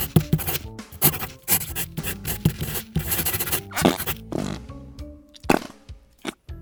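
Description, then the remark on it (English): A pencil writes on paper, scratching in quick, uneven strokes, with short scribbling bursts and brief pauses between them. It is fairly loud, and no one speaks. “I'm trying to write the great American novel here.”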